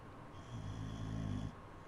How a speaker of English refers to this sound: That's Lulu, just Lulu snoring.